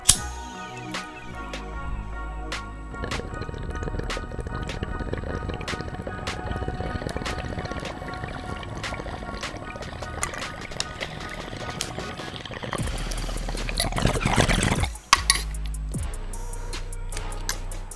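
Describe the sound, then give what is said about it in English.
Steady gurgling of water bubbling through a bong as a person takes a first bong rip from a freshly packed bowl, a long continuous pull, with a louder, rougher burst of bubbling near the end and no talking. “I will be right back so we can smoke our first bong rip of the episode together.”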